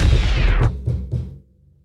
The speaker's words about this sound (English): Knock on wood if you're with me, man. All right.